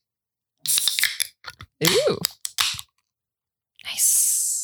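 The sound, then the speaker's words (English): Beer cans snap open in a few sharp cracks and pops, ending in a loud, sustained fizzing hiss, with a brief exclamation from a voice in the middle. “All right, cans at the ready.”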